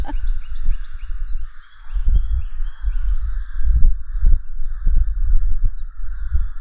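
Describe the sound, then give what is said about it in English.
Many crows caw over one another in a steady, overlapping chorus in the woods, with low gusty rumbles of wind buffeting underneath and no one talking. “It sounds like the crows are having a party over in the woods.”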